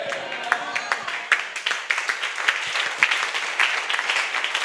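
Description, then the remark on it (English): An audience claps steadily, many hands producing a dense, continuous patter with sharper individual claps popping out, loud for the whole stretch. “May it be so for all those who are clapping.”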